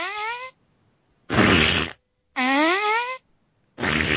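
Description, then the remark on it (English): Four loud fart noises trade back and forth in a fart-off between a soundboard fart sound and mouth farts, alternating between squeaky, pitch-bending toots and buzzy mouth raspberries, each about half a second long with short pauses between, with no talking. “That soundbox cannot compare to a good old mouth fart. I don't know. Let's have a fart off right now.”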